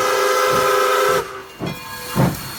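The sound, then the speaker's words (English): A train whistle sounds steadily over loud steam hiss on a train ride from Winnipeg to Churchill, then cuts off, leaving two short bursts of hissing steam. It is loud, with no voices. “That's why it took 48 hours for my train ride to get from Winnipeg to Churchill.”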